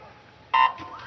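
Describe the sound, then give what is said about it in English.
A single short, loud electronic beep starts a women's 800-meter freestyle swimming race at a pool, ringing out sharply against a low background murmur, then fading quickly into echoing ambient noise. “All the swimmers lean forward on their angled starting block, fingers and toes curled over the edge, ready to propel themselves into the pool at the sound of the buzzer.”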